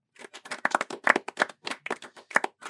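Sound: small audience clapping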